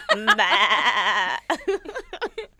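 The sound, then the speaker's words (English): A person imitates a sheep with their mouth as a sound effect. It is one long, quavering bleat that wobbles in pitch for over a second, followed by a few short voiced sounds like brief talk or laughter. “That was like a sheep.”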